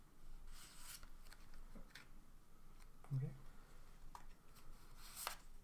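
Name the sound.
shuffling playing cards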